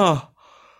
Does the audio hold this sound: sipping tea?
no